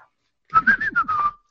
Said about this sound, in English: A soft tone comes from the china cabinet across the room.